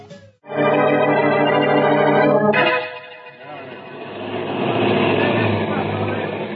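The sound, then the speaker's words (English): Police cars pull up in a street full of policemen in the Boston Blackie radio drama broadcast October 22, 1946: a loud, steady horn-like blare for about two seconds, then a busy rumble of engines and street noise with a faint murmur of voices. “Good heavens, Blackie, look at all those police cars. And all the policemen in the street.”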